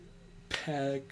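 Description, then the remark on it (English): One sharp hand clap, clapping out the syllables of a word, followed right after by a short sustained vocal sound, then a faint second tap at the very end. “I was clapping out the syllables, but I wasn't keeping track of how many were in my head.”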